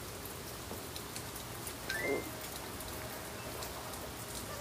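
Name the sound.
pouring rain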